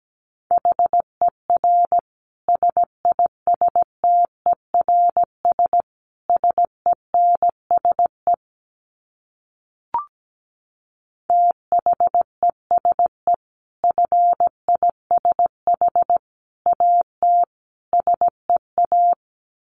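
Morse code sent at 17 words per minute as a steady, mid-pitched beeping tone, with quick short and longer beeps grouped into letters and words. A brief silent gap with a soft click falls midway.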